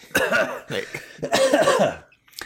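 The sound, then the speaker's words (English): A person coughs three times, loud, each cough rough and throaty, the last one longer and drawn out before a short silence. “Before you talk, cough.”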